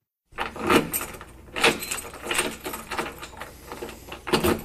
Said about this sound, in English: Let me open the door.